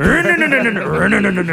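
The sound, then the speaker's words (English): A voice imitates two motorbike engines revving after both bikes are turned on in a garage with the door closed, a loud, continuous buzzing drone with a wavering, rising and falling pitch that lasts about a second and a half. “they turn both bikes on in a garage and then close the door. And then you just hear both bikes like.”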